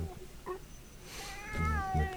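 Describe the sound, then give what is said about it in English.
A cat meows: a couple of short, faint chirps first, then a longer, wavering, drawn-out meow that rises in loudness toward the end. “This one's going to really upset the cat.”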